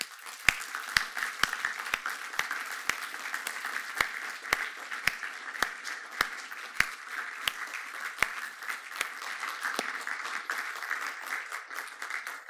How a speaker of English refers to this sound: Those of us who have stayed where we are, I just want us to applaud these people for coming forward.